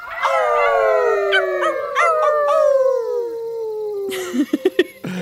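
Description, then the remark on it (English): Several voices of people imitating wolves howl together on Yugambeh country, long wavering cries sliding downward for about four seconds, followed by a few short, loud yelping whoops at the end. “But before you go, do you want to howl at the gibbon with me?”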